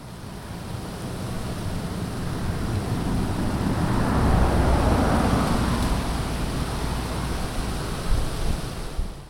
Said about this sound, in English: Even in the ridiculously bucolic French countryside where I spent the month of April, I couldn't get away from the deafening sound of cars.